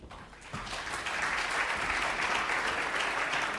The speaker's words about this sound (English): Well, thank you, ladies and gentlemen, for that clap. Most unexpected.